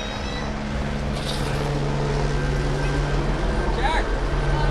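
A helicopter doing circles about 40 feet up while people on the sidewalk watch, a steady, loud droning rumble with a low tonal hum running unbroken through the whole stretch, holding an even level with faint murmuring mixed in.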